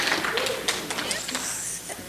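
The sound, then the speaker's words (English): An audience claps steadily for a couple of seconds, a dense wash of many overlapping hand claps at an even, fairly loud level, with some voices mixed in underneath, applauding the people who took part in a fast that week. “Give these guys a big hand clap.”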